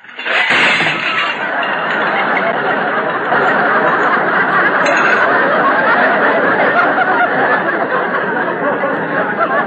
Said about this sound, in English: Rochester, why'd you drop those dishes? All I said was I gave a man 50 cents. Rochester, you didn't have to push that second stack off the drain board. I didn't touch them. They jumped off by themselves.